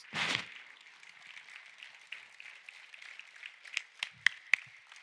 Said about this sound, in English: Let's just give God a big shout. Stand up, give a clap for these guys.